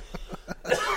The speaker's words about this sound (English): Sure, you coughed right on the cheese. Away with it! Take it away. Take it away. I don't want it now. It's tainted.